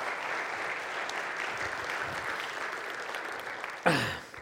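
An audience applauds steadily, a dense wash of clapping holding at an even level, then a brief sharper burst near the end as the clapping tapers off.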